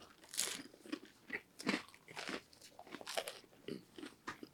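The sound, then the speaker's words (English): Crunching as someone bites and chews a crisp, thin pizza crust from a large pizza that had been sitting out about half an hour, with a run of sharp, crackly bursts repeating every half second or so, loud, with no talking. “Great crunch.”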